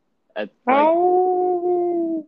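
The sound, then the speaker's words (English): A person imitates a howl, recreating an actress's howl at the end of an acceptance speech: a short yip, then one long, steady, drawn-out howl lasting about a second and a half, loud, with no talking around it. “She did a weird thing, and she had her little acceptance speech, and at the end, she fucking howled.”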